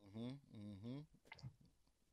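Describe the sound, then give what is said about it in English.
A drawn-out voiced hum is followed by soft sipping of beer from a bottle: brief wet slurps, small mouth clicks and a swallow, fairly quiet. “I ain't trying to get going too deep tonight, but and of course I'm sipping on that Rona, you know.”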